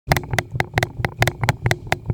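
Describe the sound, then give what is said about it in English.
Loud, rapid banging on a door, about ten heavy thuds in a fast, steady rhythm, each one sharp, with no voices. “And then finally, you hear a bang at the door.”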